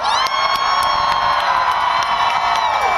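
A large crowd screams and cheers continuously at high volume, a dense wall of shrill voices and whoops with scattered claps, sustained without a break from start to finish, after being asked to scream for Planned Parenthood.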